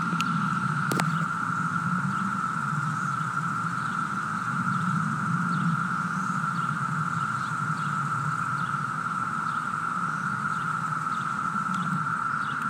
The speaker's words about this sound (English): I'm going to give you guys a sampling of how these cicadas sound